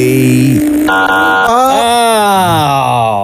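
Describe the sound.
As a clue in a guessing game, a voice imitates an airplane taking off with a loud, buzzy, continuous drone that shifts abruptly and then sweeps upward in pitch, like engines revving down a runway.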